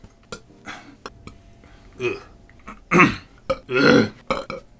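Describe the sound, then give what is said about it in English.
A series of loud burps from drinking coffee, with a few small throaty clicks and swallows leading up to two big, drawn-out belches near the end. No speech. “coffee burps are bad.”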